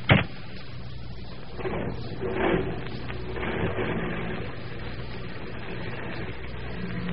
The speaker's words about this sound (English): Here comes Denny with my car now.